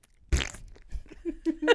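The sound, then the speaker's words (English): A voice imitates a fart: a sudden, loud, raspy burst with no words, followed by a few shorter buzzing, sputtering bits that trail off over about two seconds. “We're going to be Foleys for farts.”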